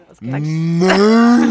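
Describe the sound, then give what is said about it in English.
A person imitates a cow's moo with one loud, sustained, slightly rising vocal tone lasting over a second, heard alone. “I like how you went with the semantics on a cow noise.”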